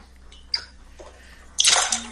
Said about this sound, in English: Then you want about 3 parts of cold milk. So I'm just using a shot glass to measure.